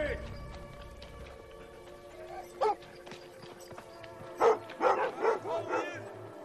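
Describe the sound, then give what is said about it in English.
Police dogs bark faintly over a steady electrical hum: a single bark, a pause, then a rapid run of about five sharp, mid-pitched barks. “Where the hell did they get the dogs from?”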